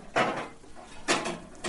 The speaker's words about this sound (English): If these chairs weren't so clangy, I wouldn't interrupt my classes for them. But it's like, the second you move one of those chairs, you got to stop.